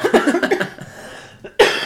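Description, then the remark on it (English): A sputtering fit of coughing after inhaling one's own spit: a quick run of choked, wet coughs, a brief pause with a faint breath, then one more loud, harsh cough burst. “I inhaled my own spit.”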